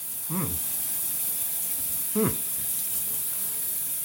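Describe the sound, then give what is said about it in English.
A shower runs with a steady, even hiss of spraying water throughout, broken twice by brief, low, voice-like sounds that sweep downward in pitch. “It sounds like a shower.”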